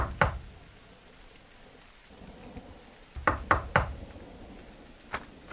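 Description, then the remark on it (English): Steady heavy rain hisses throughout, broken by a few sharp, loud thumps, one early and a cluster of three near the end, like thunder cracks or knocks. No one speaks. “Oh, I'm freezing. I've got to get out of the rain.”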